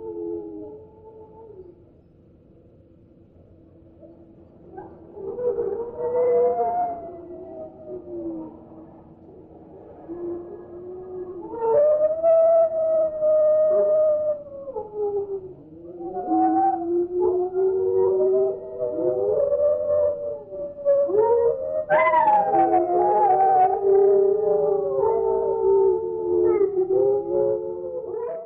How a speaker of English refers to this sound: So I do have another one here that is six singing dogs all at once.